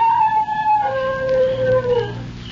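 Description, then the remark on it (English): A dog howls in a long, sustained wail that slides downward in pitch, with a steady low rumble underneath throughout. “he howled.”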